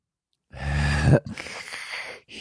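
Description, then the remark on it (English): A person does a soft vocal imitation of a dainty little snore: a breathy rasping inhale, then a gentler fluttering exhale, heard alone with no talking. “Yours is definitely a snore, but it's just. Cute. It's cute. It's not nasally.”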